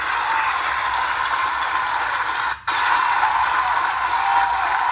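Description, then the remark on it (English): A dense wash of crowd applause holds steady and fairly loud, with a brief dropout partway through before the clapping resumes at full strength. “Cue the applause.”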